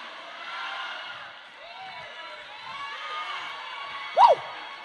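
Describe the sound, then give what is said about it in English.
A large audience screams and cheers in a sustained roar of many voices, with scattered shouts rising above the din and one sharp, loud whoop near the end. “Somebody scream, enough is enough.”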